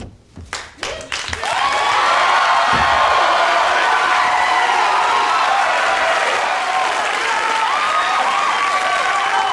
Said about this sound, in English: So, the episode opens up with Al coming into a glorious audience applause.